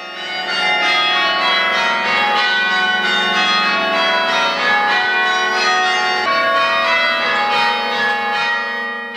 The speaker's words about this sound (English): Sound of the bells of St Thomas's Church here in Douglas. A device that enables one person to ring all the church bells is the Ellicomb apparatus. Each bell is struck while it's static, instead of the bells being rotated.